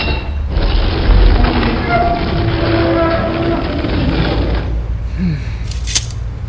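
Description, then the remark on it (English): Great stone doors of a pyramid swinging open after a stone lever is pushed down: a heavy, deep grinding rumble that rolls on steadily for about four seconds, loud and dense with scraping overtones, then drops away to a faint, settling tail. “With little effort, she pushed it down, and the great doors swung open before me.”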